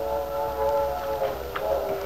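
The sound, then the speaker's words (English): The whistle of the 7:15 steam train sounds one long, steady chord, its several tones held together for about two seconds at a fairly strong, even level with no talking. “There's our whistle, Lefty. Yep, the 7:15. Some engineer on that train.”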